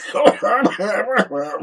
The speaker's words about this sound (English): Okay. Non-COVID related cough.